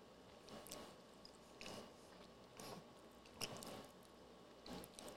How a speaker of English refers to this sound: It's actually going to take me a little bit longer than 10 seconds to get them chewed up enough to swallow them.